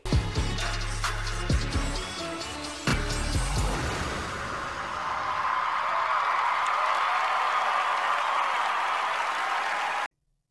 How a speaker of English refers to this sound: the crowd went wild for their performance.